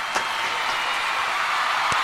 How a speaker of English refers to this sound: So much applause.